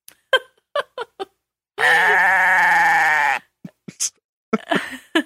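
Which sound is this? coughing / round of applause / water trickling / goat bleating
goat bleating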